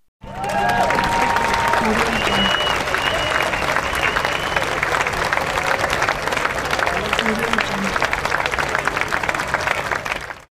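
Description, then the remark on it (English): A sustained round of applause marking six months of a one-year music challenge, dense steady clapping at a loud, even level for about ten seconds, with some faint tonal sounds and murmuring mixed in at the start. “So let's have another round of applause for me and the music.”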